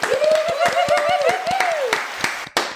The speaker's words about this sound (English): So exciting yeah, should we do some applause? Well done, girls. Woo!